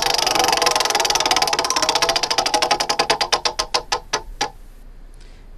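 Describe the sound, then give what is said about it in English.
A prize wheel spins for an ESPN radio call-in roulette game, with a rapid flurry of clicks that gradually slow and spread apart, ending in a few last distinct ticks as it comes to rest. No one speaks. “Let's spin the wheel.”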